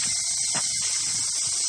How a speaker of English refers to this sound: I got about 10,000 cicadas with me because that's how I roll.